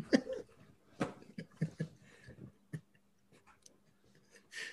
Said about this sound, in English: This thing was having an asthma attack or something. It's a cat. It's a cat.